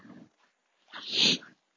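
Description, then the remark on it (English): A female husky German Shepherd mix dog vocalizes: a short low grumble, then after a brief pause a louder, whiny yowl lasting about half a second. No one speaks. “Oh, my dog is a husky German Shepherd mix.”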